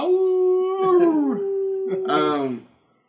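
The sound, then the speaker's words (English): A person gives a loud, drawn-out howl imitating a dog, holding a steady pitch, then breaking into wavering, sliding yowls for about two and a half seconds before stopping. “Yeah, I'm howling for it.”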